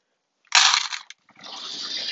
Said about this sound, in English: Dropping cat food in the cat bowl.